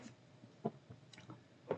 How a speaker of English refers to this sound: So I taste the hazelnut, I taste the caramel, I taste the chocolate. Let me take another sip.